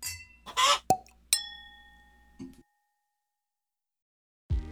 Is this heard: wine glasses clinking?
yes